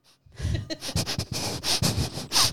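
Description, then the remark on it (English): A person sniffs the air in a rapid series of short inhalations, several quick sniffs in a row with brief pauses between them, fairly loud and with no talking. “Or tried not to do that because they didn't want to sniff it.”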